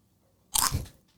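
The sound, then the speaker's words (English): A single sharp, crunchy bite into a crisp snack, loud, with a brief crackling tail that fades quickly into quiet. No one speaks. “That sounds like a full-blown Cheeto. That had so much crunch to it.”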